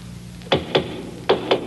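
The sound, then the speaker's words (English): Four knocks on a door in two quick pairs, each a sharp, solid rap, with a brief pause between the pairs. No one speaks. “Somebody's at the door”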